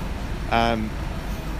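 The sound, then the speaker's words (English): A steady low rumble of road traffic from two big main roads fills the background outdoors throughout, with a brief tonal voice-like sound cutting in near the middle. “We are set outside by two quite big main roads. Yes. So, hence the background noise.”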